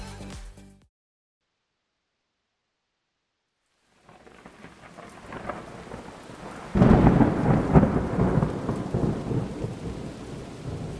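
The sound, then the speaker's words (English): A thunderstorm builds after a brief silence: steady rain hisses, then a deep rolling thunderclap swells loud, rumbling on under the downpour. No one speaks. “It was a dark and stormy night.”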